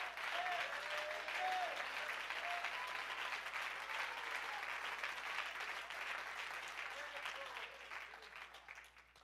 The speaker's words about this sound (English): You ought to clap your hands if you can even find the strength.